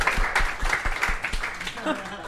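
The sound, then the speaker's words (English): A burst of audience applause at a comedy festival venue, a dense wash of many hands clapping at a steady, moderate loudness for a couple of seconds, with voices mixed in underneath. “So do you think that's the only time anyone in this building has applauded piss?”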